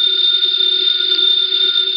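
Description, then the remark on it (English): A house telephone rings with a loud, steady, unbroken high-pitched electronic tone that holds for about two seconds, with no voices over it. “It's the house phone”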